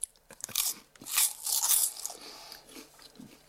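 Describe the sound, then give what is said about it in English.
Crisp crunching of a brittle Pringles crisp, several sharp bites in quick succession followed by softer chewing, heard alone without any talking. “Pringle. Does that sound like a Pringle packet? No, but the crunch sounded like a short, snappy sort of Pringle crunch”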